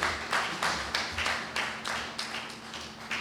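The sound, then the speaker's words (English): An audience claps in praise of Jesus in a steady rhythm, many hands striking together in sharp, even bursts about three times a second, over a low constant hum with no voices. “Clap your hands and give Jesus some praise.”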